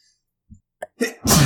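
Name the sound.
sneeze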